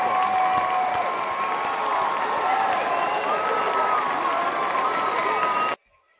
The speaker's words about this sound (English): Major props to Tiffany Stratton. Let's give a round of applause to Tiffany.